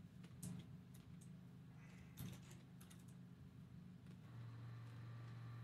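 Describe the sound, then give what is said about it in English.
Cars rumble by outside, a low steady engine drone with a vehicle growing louder and more tonal toward the end, while sharp clicking taps sound. “You can hear Fear Washington cars.”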